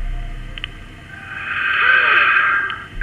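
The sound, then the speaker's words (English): A cassette player hisses with steady static, a rough, narrow wash of noise that swells louder in the middle of the stretch and then eases slightly, with no one speaking. “In the center, a cassette player emitted the sound of static for an uncomfortable stretch of time.”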